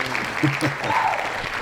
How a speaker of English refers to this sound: Insert applause here.